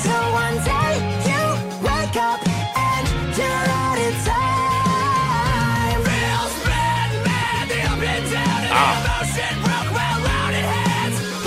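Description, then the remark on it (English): A loud, dense, happy-sounding metal song with harsh screamed vocals over bright, distorted, non-downtuned guitars, two guitars separated to left and right, and steady drums, the full band playing continuously without a break. “Those are metal screams on top of like non-downtuned guitar.”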